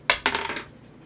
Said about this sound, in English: We've rolled so many other dice that when you said a D6, my brain had to stop and go, which one's the 6?